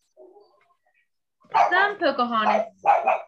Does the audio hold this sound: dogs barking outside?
yes